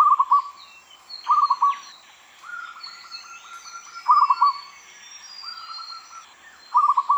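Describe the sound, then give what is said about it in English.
A series of soft, staccato cooing trills from a zebra dove repeats about every second or two, with faint higher bird chatter in the background and no talking. “Their soft, pleasant cooing calls are a very common part of our soundscape.”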